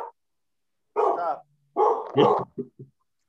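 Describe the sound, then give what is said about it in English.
A service dog barks loudly into a microphone, a few sharp, drawn-out barks followed by two short yips, with no one talking. “The dog is taking up your mic, so you'll have to try again here in a moment.”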